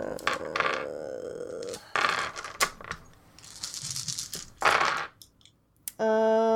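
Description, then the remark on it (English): A handful of dice rattles and clatters across a surface in several uneven bursts of sharp clicks, ending with a short voiced sound. “Oh god, I had a mitt full of dice and I only got two.”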